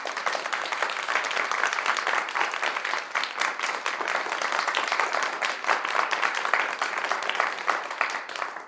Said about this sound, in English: Before we begin, let's give a round of applause to all who have decided to join us today.